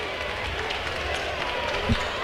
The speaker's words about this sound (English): and this crowd at UAB starting to make some noise.